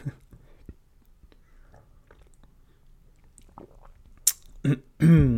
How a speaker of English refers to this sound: I'm going to take a sip of coffee while I'm integrating.